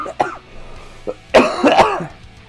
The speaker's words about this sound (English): Somehow, there was definitely a lot of coughing breaks, including this one coming up right now.